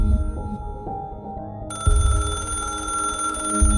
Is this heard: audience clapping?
no